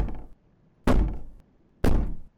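Heavy knocking on a locked wooden library door: three loud, separate thuds spaced nearly a second apart, each sharp at onset with a short booming decay, with no voices.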